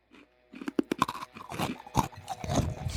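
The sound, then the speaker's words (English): Loud crunching as stale food about three days old is bitten and chewed, with sharp irregular cracks over a steady grinding chew and no talking. “What, just the crunch?”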